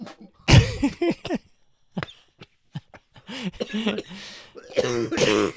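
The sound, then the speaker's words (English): A loud burst of coughing and spluttering from someone choking on a drink of water and spitting it over the floor, followed by several short gasping coughs and throaty, wheezy sputters that tail off into strained, breathy noises. “Oh, you've just spat all over my floor.”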